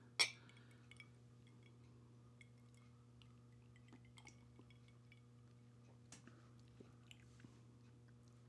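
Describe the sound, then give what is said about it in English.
A single bright clink of glasses of rye whiskey in a toast rings out at the start, followed by quiet, scattered sipping and small mouth sounds over a low steady hum, with no talking. “You want to try it? Yeah. Get a little bite on there. Cheers.”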